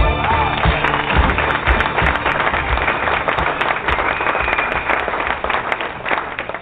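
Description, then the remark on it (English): A crowd applauds at the opening of the sports talk show Ray and Tay, with many hands clapping in a dense, steady patter. The applause stays loud and unbroken for about seven seconds with no clear talking over it. “All right, clap it up.”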